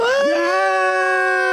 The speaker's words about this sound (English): Do you want to, at top of three, scream at the top of our lungs and nobody will hear us in the building? Of course, we're the only ones in the whole building because the Steam Center is closed on Mondays. Ready? 1, 2, 3.